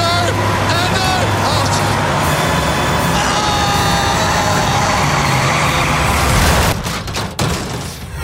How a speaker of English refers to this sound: as Hamish and I are heading back in to the middle of the figure eight, and it looks like we're going to be perfectly T-boned by another bus. As Andy and Hamish make their way into the X. Oh, no.